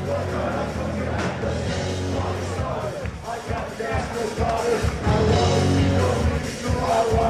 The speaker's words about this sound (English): And you can hear the crowd too. Like, yeah, hear the crowd. They all know the words.